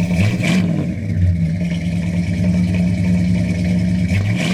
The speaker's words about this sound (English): When he listened to the engine sounds with his trusty stethoscope against the valve covers of the great 50s Caddy V8 or on the engine block itself, my father's eyes would light up with a knowing satisfaction rarely seen these days.